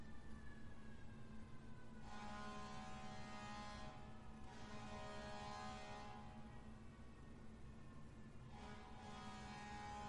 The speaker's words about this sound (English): I wish people would stop lighting things on fire so we wouldn't have sirens interrupting my show on Sunday mornings.